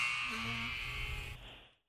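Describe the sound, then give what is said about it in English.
A trivia quiz game buzzer blares in one long, harsh, steady tone for under two seconds, loud and buzzy throughout, then cuts off abruptly. No one speaks over it. “As long as we start the question... before the buzzer, we wait for an answer.”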